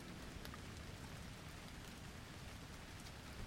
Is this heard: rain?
yes